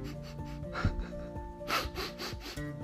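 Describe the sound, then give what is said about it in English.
A few soft sniffs in quick succession, breathy and sorrowful, from a giraffe standing on the pavement sniffing sadly, over a faint steady background hum. “On the pavement stood a giraffe who was sniffing sadly.”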